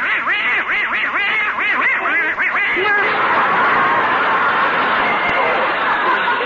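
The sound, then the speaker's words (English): A rapid, loud run of quacks from Herman, a little pet duck downstairs in front of the fireplace, fills the first half, then gives way to a dense, noisy wash of chattering sound that continues to the end. “Only Gracie and Herman, their little duck, are still downstairs in front of the fireplace.”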